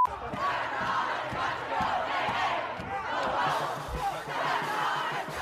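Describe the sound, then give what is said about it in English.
A large crowd of protesters gathered at the doors of the Supreme Court of the United States, shouting and chanting together outdoors, a dense, continuous roar of many voices with no one speaking clearly above it. “These are live images, folks, at the doors of the Supreme Court, where you can see protesters have gathered. They are demanding that their voices be heard as they anticipate the person who will be a new Supreme Court Justice,”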